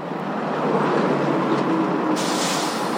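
Dense rush hour traffic rumbles steadily at the Federal Decatur Light Rail Station, where 8 lanes of traffic on Federal Boulevard and Howard Place in Denver meet multiple bus stops, at about 8:45. The whoosh of a train is heard, and a brighter hiss swells in over the final second. No one speaks.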